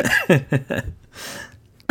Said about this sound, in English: What? Oh my god, I'm dying. Solidarity cough.